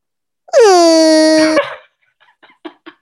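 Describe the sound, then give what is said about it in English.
A single loud, sustained yell lasting about a second, harsh and steady in pitch with a honking, sea-lion-like quality, ending abruptly, followed by a few faint clicks and shuffles. “That was a good yell. It kind of sounded like a sea lion or something.”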